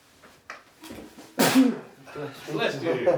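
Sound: sneeze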